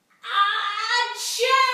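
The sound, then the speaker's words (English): A voice imitates a neighbourhood woman's loud, theatrical screaming sneeze: a drawn-out, high-pitched wailing build-up breaks into a sharp hissing burst, then trails off in a shrill, strained cry, all under two seconds. “I'm going to try and imitate what the scream sneezing lady sounds like.”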